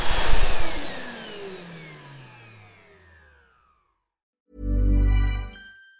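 A vacuum cleaner's motor whines down in falling pitch and fades out. After a short silence, a loud, steady motor hum runs for about a second before cutting off.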